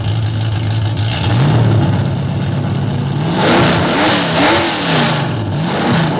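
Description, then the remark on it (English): A V8 engine idles with a deep, steady rumble, then revs up several times in quick succession, each throttle blip rising and falling, loud with no talking. “That's an 8 banger.”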